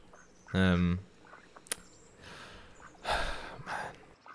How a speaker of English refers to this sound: We now take you to the park bench next to a duck pond somewhere in the world.